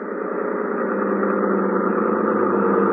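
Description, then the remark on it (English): A boat engine drones steadily, its low mechanical hum growing slightly louder over a few seconds as if drawing closer, with no voices over it. “That boat coming in is probably Ibarra.”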